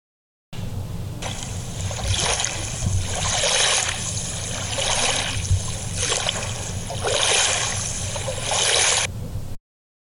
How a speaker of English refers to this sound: My feet felt unsteady as the waves lapped the stern of the boat.